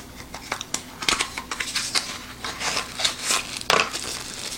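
Headphone packaging being opened: a steady stream of crinkling, rustling plastic and paper, with sharper crackles and snaps coming in irregular bursts at a moderate level, and no voices.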